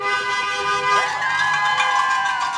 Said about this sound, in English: yelling for passing drivers to honk their horns in support.